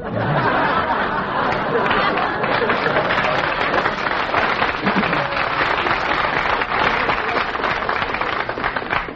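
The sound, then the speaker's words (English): A sustained wash of audience applause, including Marines in the third row, fills the whole stretch at steady, fairly loud volume, dense overlapping claps with a murmur of crowd chatter and a few scattered laughs underneath. “Did you plant those Marines out front to applaud for you tonight there in the third row?”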